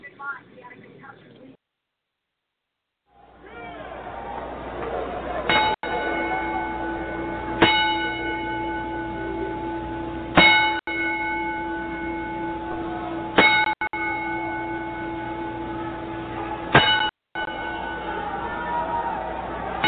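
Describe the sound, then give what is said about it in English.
A single bell tolls slowly as a ten-bell salute, each loud, resonant strike spaced a few seconds apart and ringing on between hits, after a brief faint voice at the start. “we are going to play a 10-bell flute”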